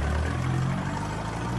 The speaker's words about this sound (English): You can hear how fucked the car is.